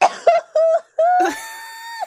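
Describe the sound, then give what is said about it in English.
A woman with a cough laughs in short, breathy bursts that break into a rough cough, then trails off into a strained, high wheeze of laughter. Fairly loud, with no words spoken. “She said she wasn't going to laugh because of her cough, and she's doing it anyway.”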